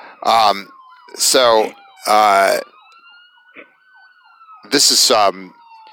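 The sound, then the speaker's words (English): An ambulance siren, heard during a person's commute, wails steadily in the background, its pitch gliding and briefly shifting into a quicker yelp, while a person speaks in short bursts over it. “So, oopsie-daisies, sorry, on my commute, I have an ambulance, just a second here.”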